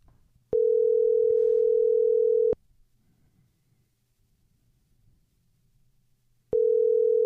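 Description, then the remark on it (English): A phone line rings out as the host calls a guest on the Brother Branson Power Hour, with a steady electronic ringback tone: one long two-second burst, a four-second pause, then the next ring starting. Loud and clear, with no voices. “Got the phone ringing there.”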